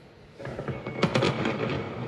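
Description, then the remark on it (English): A rapid string of sharp pops and crackles from fireworks going off in Houston, a high-drought region, on the July 4th weekend, starting after a brief quiet moment and continuing densely with one louder burst near the middle. “Tonight, the risk of fireworks accidentally sparking brush fires in high-drought regions like this one in Houston this weekend, prompting the cancellation of July 4th fireworks shows in multiple communities around the U.S.”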